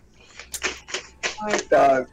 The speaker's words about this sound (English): Sorry, my keyboard. Need to turn on the numbers.